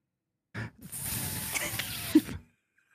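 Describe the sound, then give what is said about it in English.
A person acting out a snake character imitates a snake with a sustained, breathy hiss lasting about two seconds, fairly loud, preceded by a brief vocal onset and ending abruptly. “And then I'd slither up the leg like this, ooh, wrapping around like I'm doing a hula hoop or something.”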